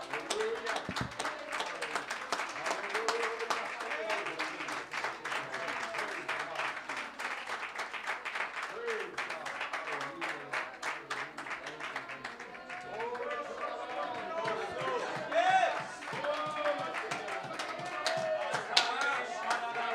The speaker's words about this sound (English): Come on, let's give that clap to the Lord.